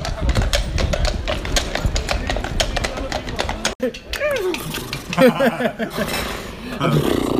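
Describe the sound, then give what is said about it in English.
A person imitates a horse as the opening of a Grand National tips segment, making rapid clip-clop tongue clicks followed by loud whinny-like vocal sounds. “I was trying to do a horse noise.”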